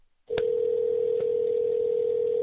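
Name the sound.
telephone call dial tone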